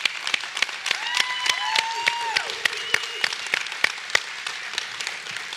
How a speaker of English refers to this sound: Why don't you give some applause.